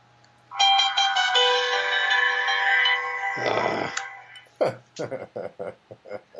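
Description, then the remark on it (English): An old phone's text message notification plays a bright, melodic electronic chime lasting a few seconds, loud, and then a man starts talking. “young with his ESPN text message notification”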